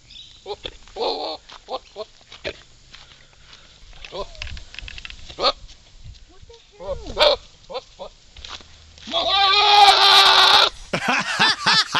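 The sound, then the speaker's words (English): Rutting goats bleat and bray in harsh, wavering calls, with one long, loud, strained cry near the end, followed by short grunting sputters. The calls are irregular. “Goats in rut.”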